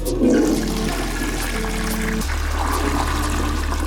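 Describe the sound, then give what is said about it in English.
A toilet flushes, a steady rushing swirl of water that drains down with a low gurgle and settles into the hiss of the tank refilling. “So, if you haven't listened to last week's episode on toilets, hit pause now, or by the end of this flush, you'll have that show spoiled for you.”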